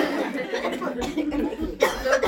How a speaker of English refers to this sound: You need some water? I'm just going to cough it out really fast. Dude, please, take your time.